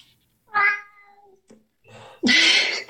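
A cat meows twice: a short, clear mew first, then after a pause a louder, drawn-out, strained meow that fills the rest of the moment. No one speaks.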